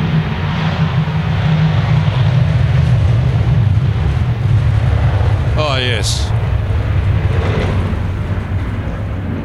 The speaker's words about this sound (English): What's that taking off? It's an F-35. You can probably hear it, but boy, you can also feel it. That's a bit louder. You can feel that one. What was it? Looks like a four-ship of F-35s taking off.